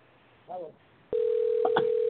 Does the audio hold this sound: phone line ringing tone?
yes